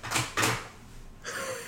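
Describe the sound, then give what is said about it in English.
A new chair creaks: two quick strained creaks in a row, then a pause before a longer, softer groan of wood as it shifts again. No one speaks. “It's your creaky-ass furniture. It's the new chairs.”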